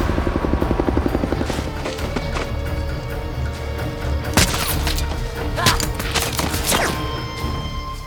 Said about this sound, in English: chopper's inbound.